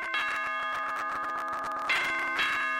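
A doorbell chime rings out clearly with sustained, ringing tones, struck again twice near the end in a ding-dong pattern, with no voices present.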